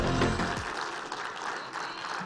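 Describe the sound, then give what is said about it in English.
An audience at Capital City Church applauds in praise of God, a dense, steady wash of many hands clapping at once, loud and sustained for a couple of seconds, with faint voices and a brief low tone early on. “The Bible says in Psalm 47:1, "Oh, clap your hands, all ye people, and shout to the Lord."”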